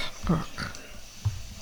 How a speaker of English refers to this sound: You hear his breathing?